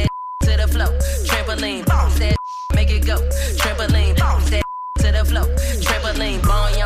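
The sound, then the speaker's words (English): Three short, steady censor beeps bleep out a swear word in a loud, bass-heavy pop track, each one briefly replacing the music before the song resumes at full volume. “What are you beeping out? The S word.”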